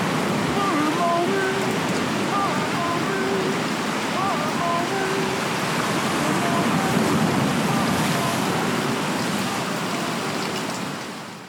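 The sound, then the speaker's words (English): A field recording of ocean surf: a steady, full wash of waves rolls on throughout, broad and roaring, with faint indistinct voices drifting underneath now and then. “So it starts off with the ocean noises, the rain, television, train whistles, parades, you know, whatever he was encountering, he recorded.”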